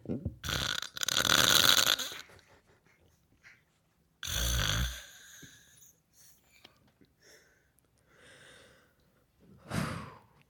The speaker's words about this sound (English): For our very first one. Is this a wonderful woman sleeping and snoring very loudly?